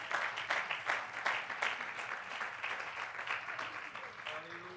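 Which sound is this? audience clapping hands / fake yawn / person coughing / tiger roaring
audience clapping hands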